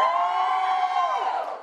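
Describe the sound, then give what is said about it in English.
A crowd cheers and whoops loudly in one sustained burst of many voices, holding steady for a moment before starting to fade. “I'm pretty sure you had the same amount of applause.”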